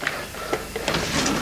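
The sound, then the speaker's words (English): A kitchen drawer holding knives slides open with a rough scraping rumble and a few sharp clicks and rattles, lasting just over a second with no voices. “You don't need to look in that drawer, you really don't.”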